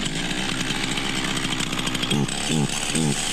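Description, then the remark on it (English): A running chainsaw, balanced on a man's chin while he walks in a record attempt, idles with a steady buzzing drone, then revs up sharply three times in quick succession toward the end, loud with no voices. “It was for balancing a running chainsaw on your chin.”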